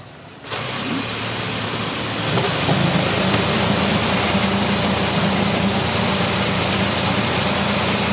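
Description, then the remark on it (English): A field of race car engines at a Belle Isle race in the NTT Championship bursts to life at once after the command to start engines, swelling into a loud, dense, continuous roar with a deep growl that builds and holds steady. No one speaks. “As the engines roar to life, we're going to ask one of these talented drivers to give us an idea of what Belle Isle is like.”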